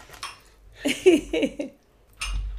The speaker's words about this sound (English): Here, let's see if it'll pick it up. We'll just be real quiet. I mean, it's definitely going to get the clink of the glass.